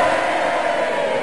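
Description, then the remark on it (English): A crowd cheer sound effect played to introduce a guest: a dense, steady roar of many voices at a loud, even level throughout, with no distinct words or individual shouts standing out. “There's got to be, like, a cheer... okay, here we go.”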